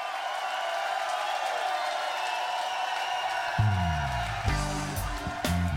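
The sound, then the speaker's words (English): A steady wash of applause and crowd noise fills the whole stretch, with a low, tonal sound coming in underneath during the last couple of seconds. “Oh yeah, we're talking about the World Cup, and that at least is worth a round of applause.”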